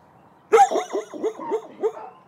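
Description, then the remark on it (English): Dogs in kennels about 25 feet wide and 10 feet deep, each with a doghouse, bark at a stranger holding a microphone: a loud burst of about six quick barks in a steady rhythm, some with a whining, yelping edge, with no talking. “They see me, a stranger with a fuzzy-looking microphone, and they start doing what dogs do best.”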